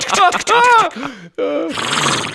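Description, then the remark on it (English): A person imitates a tiny horse's whinny: a high, warbling, wavering vocal neigh in a few quick bursts, ending in a breathy, snorting rush of air, loud. “Although, imagine you're there in the fight, and you have this tiny horse, dude, and it's fast.”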